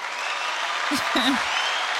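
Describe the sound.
Steady, dense applause played from an applause sound-effect button fills the whole clip, with a short burst of low voices briefly rising over the clapping near the middle.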